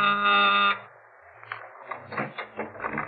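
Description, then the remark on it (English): A loud, harsh electric door buzzer sounds once, a steady raspy tone lasting under a second, followed by muffled voices talking. “She made out with Mona Taylor's mother when my door buzzer phoned.”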